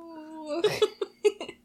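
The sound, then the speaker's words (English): A voice imitates a wailing, cat-like stomach growl: a steady whining tone that breaks into a string of choppy, yowling bursts, fairly loud. “My jaw dropped in shock as what I can only describe as the sound of an agonizing, wailing alley cat in heat with a persistent Doppler effect added to its voice emitted from some nether region of my intestines.”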